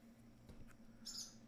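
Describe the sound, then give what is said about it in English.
A brief, high-pitched bird chirp rings out near the end, faint, over a steady low background hum with no one talking. “So, the birds.”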